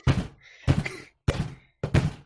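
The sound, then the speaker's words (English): Four loud, heavy thuds of someone banging hard on a desk, spaced about half a second apart, each followed by a brief rattling ring before the next blow. “Let's have a bang test. How loud can you bang your desk?”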